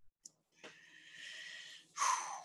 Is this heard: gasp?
yes